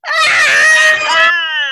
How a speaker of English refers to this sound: And ladies, what do we think about Roe? Let's give one of our primal screams. Ready? One, two, three.